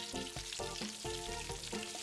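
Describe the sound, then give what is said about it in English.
A thin slice of beef for breaded steak fries in hot oil in a frying pan, cooked 1 to 2 minutes per side, with a loud, steady sizzle, punctuated by recurring bursts of crackling and spitting roughly every half second. No one speaks. “Fry the first slice of beef on each side for 1 to 2 minutes.”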